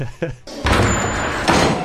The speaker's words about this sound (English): No, this is a really cool introduction to Snape. Because it's a bunch of kids sitting quietly in class, a door flings open, and a guy stomps to the room and starts delivering his speech.